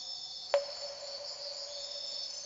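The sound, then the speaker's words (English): Forest ambience filled with a steady, high-pitched chorus of chirping crickets, with a single brief click early on and a faint low hum underneath. No one speaks. “Yet somehow I find myself in this forest.”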